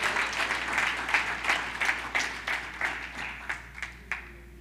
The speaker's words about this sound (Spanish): Dale fuertes aplausos al Señor, si crees que es la verdad.